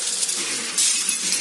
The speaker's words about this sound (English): Just when I'm trying to estimate how many fucking motherfuckers might be in here, I get attacked from the back. He throws me into the glass,